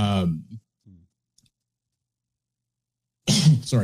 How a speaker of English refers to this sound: caught myself coughing. It's all right.